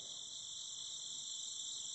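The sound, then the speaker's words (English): A dense chorus of chirping insects, like crickets, in the night air forms a steady, shrill, high-pitched trill that holds at an even level throughout, with no voices. “The stars overhead twinkling, the sound of chirping insects in the night air.”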